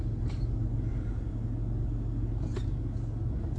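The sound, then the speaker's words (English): A small car's engine rumbles low and steady as it labors to get down a road, with a couple of brief scraping bursts breaking through the drone. “Got this little freaking sneaker of a car that is trying to get down this road.”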